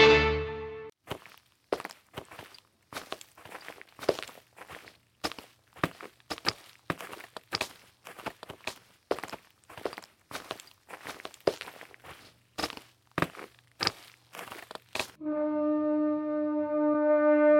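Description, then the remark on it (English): Steady footsteps walk at an even pace, roughly two crisp thuds per second, with no one speaking. A sustained, humming musical tone sounds briefly before the steps begin and again after they stop. “We can't travel without horses. We're 4 days from the nearest town. What do we do? We'll have to walk.”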